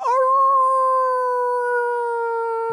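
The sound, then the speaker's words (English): A person imitates a wolf howl to end a sung song: one long, loud howl that swoops up briefly at the start, then holds a steady pitch for nearly three seconds with no talking. “I want to try out your every song ends with a wolf howling.”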